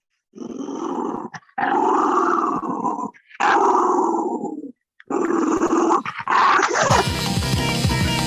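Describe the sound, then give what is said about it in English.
A female dog growls in four long, rumbling bursts separated by short pauses, ending with a few yips as music starts up at the very end. “All right, let me see if I can get her to growl a little.”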